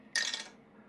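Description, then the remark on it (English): A short, bright clatter of dice tumbling through a dice tower, rolled for a perception check in a tabletop game, one quick rattling burst that fades within half a second against a quiet background. “Dice doesn't work as well. Maybe it's your dice tower.”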